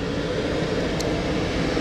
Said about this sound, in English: Shout out to the fire truck. Woo! The fire department.